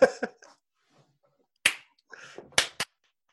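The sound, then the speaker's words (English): A few sharp hand claps at irregular intervals, loud and snappy with brief pauses of quiet between them, and no voices. “Why do they keep clapping, the dickheads?”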